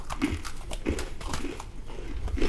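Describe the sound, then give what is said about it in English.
Crunching as someone bites into a crisp, cream-filled vanilla sandwich cookie and chews, with several sharp, brittle crunches repeating in a steady rhythm and no talking. “They're extremely crunchy.”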